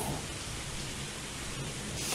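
Steady, dense rainfall hisses evenly across the whole stretch, a broad wash of patter with no voices, loud throughout.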